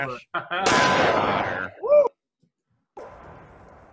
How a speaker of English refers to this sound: So it's the same thing every time. He just knocks down the target with it. Yeah. Like, look, you done did it again. somehow shooting this tank round at a fucking steel target on wood post knocks it down.